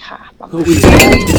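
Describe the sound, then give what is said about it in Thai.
A drinking glass is knocked over and clatters down without breaking, giving a sharp, bright clink followed by a brief rattling scrape, while people talk over it. “ครับเมื่อกี้ทำแก้วหกตก เมื่อกี้แน่แต่ ง มันแก้วตก แก้วไม่มีอะไรเนี่ย”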